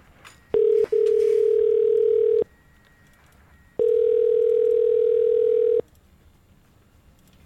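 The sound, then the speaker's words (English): A telephone ringing tone as a call is placed: a steady, fairly loud mid-pitched electronic buzz in long bursts. A brief pulse is followed by a longer tone, a pause, then another long tone. No one speaks. “OK, let's make that call, shall we?”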